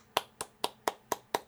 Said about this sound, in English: Thank you. I appreciate the clap. That's nice.